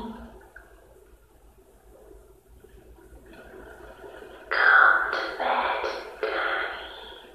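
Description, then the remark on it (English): Tea pours into a cup: silence for several seconds, then a loud, splashing stream of liquid that comes in a few uneven surges before trailing off. “Pouring a cup of tea.”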